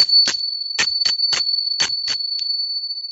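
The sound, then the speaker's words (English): Small cymbals clash together about eight times in an uneven rhythm, bright, as their rims strike together, while a high, steady metallic ring sustains beneath the strikes throughout. “So it makes a clap because when the rim come together, it makes this sound. But there's also a long-lasting ringing after that.”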